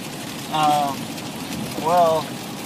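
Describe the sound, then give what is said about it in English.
Heavy rain falls in a steady, dense hiss between Bellingham and Everett in America, broken twice by short, tonal vocal sounds rising above the downpour. “Pissing rain.”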